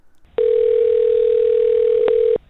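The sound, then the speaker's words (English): A telephone dial tone after a hang-up: one loud, steady mid-pitched hum that drones unbroken for about two seconds, with faint clicks at its start and near its end, then cuts off. “Oh, she hung up.”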